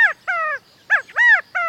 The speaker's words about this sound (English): Does this bird seem to be saying, Chicago, Chicago? Don't be misled. This small ground bird, the California quail, is strictly a bird of the far west.